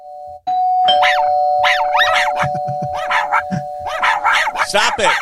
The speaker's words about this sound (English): So that drives me crazy. I mean, that's life with a small dog, but, you know, and then you have your dog who's cannon barking at the front door